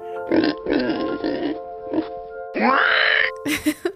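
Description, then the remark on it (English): A person vocally imitates a pig's squealing whinny: a series of strained, nasal squeals and grunts in bursts, loud, with a rising high-pitched squeal near the end. “And for pig, we can either do the classic snort, or we can do the pig whinny, which is actually my specialty. It goes a little something like this.”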